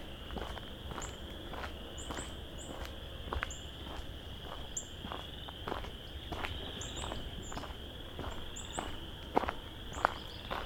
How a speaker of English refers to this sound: Some northern cardinal here somewhere, calling.